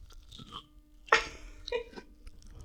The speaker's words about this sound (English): My guy watched me chew it four times and said that was an olive.